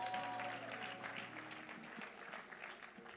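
People applauding for House of Judah, a dense, steady patter of many hands clapping at once that holds through the whole stretch, with a faint low hum underneath.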